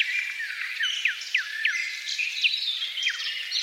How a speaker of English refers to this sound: We take you now to a bird symphony at the break of dawn, deep in a forest in the heart of Poland.